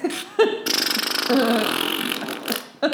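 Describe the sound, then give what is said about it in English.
A voice makes a long, wet, sputtering fart noise with the mouth, a buzzy rattling burst lasting about two seconds, loud, framed by brief vocal sounds at start and end. “This is your farts.”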